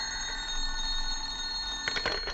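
A telephone bell rings at home in the morning with a bright, metallic trill, fairly quiet and continuous throughout, with a few sharper clatters near the end and no voices.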